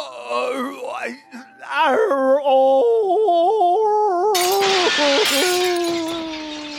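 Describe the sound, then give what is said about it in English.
A voice wails and moans in a long sustained tone, then glass shatters loudly partway through, with a second crash of breaking glass following as the wailing continues. “I should have gone into glass repair.”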